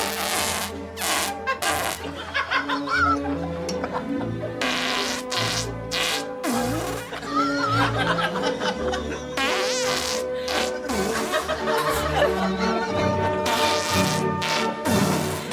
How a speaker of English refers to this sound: But you've heard him. Mate, that's not a man who's well. Like, I understand. It's not your regular fart. You shouldn't be able to fart that much into a tune on command.